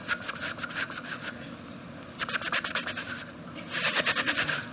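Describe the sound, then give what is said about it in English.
A voice imitates a car engine grinding as it rotates without oil whenever the gas pedal is pressed while driving: three bursts of rapid, raspy, hissing pulses, like scraping or sawing, with short pauses between them and the last burst loudest. “A really weird sound started to come from the engine. Whenever I step on it, it goes...”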